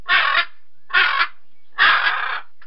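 Three loud, harsh squawks from a blue and gold macaw, each lasting under half a second with short gaps between, the last one drawn out a little longer.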